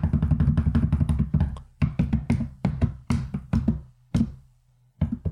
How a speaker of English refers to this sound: Sorry, that was me knocking on all of the wood to make sure that the results actually came in the same night that this episode does.